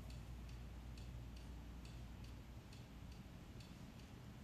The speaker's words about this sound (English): Suddenly, when it is taken off, you experience, the clock is ticking in the background all the time. Most of the time, we only become aware of it when we go to sleep. Oh, this clock was ticking all the time.